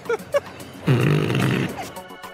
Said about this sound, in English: It's a fart ninja, and I'll just say for the record as a mom that farts are not funny, and I don't want to hear farts at the table